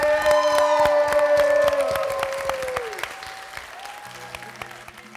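A crowd bursts into dense, steady applause, with a few faint cheers mixed in. Sustained musical tones ring over it and slide downward. The clapping gradually thins and softens toward the end.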